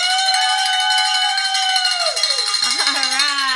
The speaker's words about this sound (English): And we get to ring the bell because we're a founder.